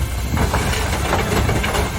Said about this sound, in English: This is them about to pour their coal.